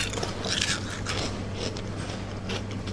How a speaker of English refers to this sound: I have a little crunch here, will I?